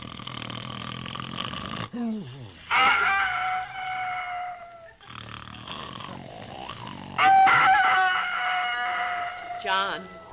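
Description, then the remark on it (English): A rooster crows loudly on a farm at 4:30 in the morning, two long strained calls a few seconds apart, with low rumbling, snore-like breathing in between. “The rooster is crowing.”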